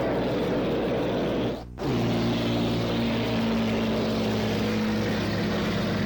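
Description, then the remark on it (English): The Smirnoff racing boat's engine roars loudly as it goes by during the run-up to a race start, a dense droning growl that cuts out for an instant, then returns with a steady pitched whine as it runs past. No voices. “Boy, that's a loud boat.”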